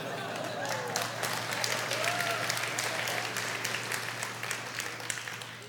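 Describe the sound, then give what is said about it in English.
Steady applause from a large crowd of fans, a dense wash of clapping that holds at an even loudness for several seconds, with faint murmuring voices underneath and no single claps standing out. “State fans clap.”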